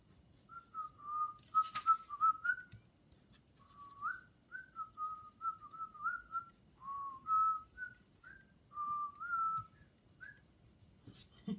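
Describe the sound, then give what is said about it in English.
Someone whistles a simple melodic tune, a steady string of clear, wavering notes in short phrases with brief pauses, moderately loud over a faint low background hum. “Who can whistle? Who can whistle? Let me hear you.”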